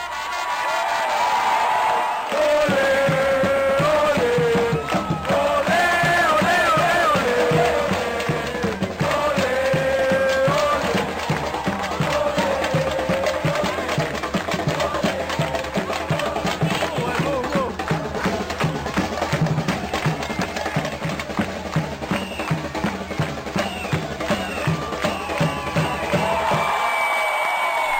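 A lively band plays loud, driving world music with steady, fast percussion and bright melodic horn-like lines, with crowd noise mixed in, running nonstop for nearly half a minute.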